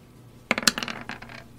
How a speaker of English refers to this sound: I like the noise it makes when the dice roll.